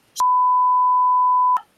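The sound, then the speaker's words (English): A single steady, loud censor bleep tone holds at one pitch for well over a second, beginning and ending abruptly with faint clicks at each edge and no voices. “No, I just wanted a long beep.”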